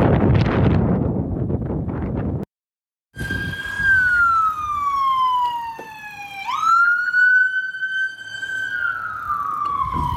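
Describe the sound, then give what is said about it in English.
After a burst of wind rumble and a brief cut, an ambulance siren wails loudly during a bike ride in Portland, where a cyclist was on the ground, its pitch sliding slowly down, jumping back up, then falling again. “So right back here, there was a cyclist on the ground, an ambulance, and I don't know if she fainted and crashed into the curb, but next check, she was in some real trouble.”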